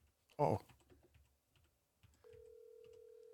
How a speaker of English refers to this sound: I got to put the volume up, too. The phone is ringing.